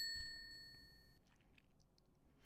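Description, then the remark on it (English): A single bright, high-pitched bonus ding sound effect rings out and sustains for about a second before cutting off, leaving only faint background noise. No one speaks. “Boy, that gets a bonus ding.”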